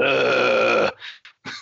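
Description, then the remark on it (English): A person imitates the grunt of a troll behind a door with one loud, drawn-out guttural groan under a second long, followed by a few short, breathy huffs. “I just picture like this troll behind a door going, ugh.”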